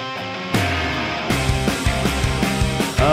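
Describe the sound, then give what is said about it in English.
A gritty, distorted bass guitar riff plays loud and up front, punching out a string of low, repeated notes in a steady rhythm that shifts pitch as it goes, with no voices. “It's like we tried to change it to a bass, put some distortion on it, which sounds cool.”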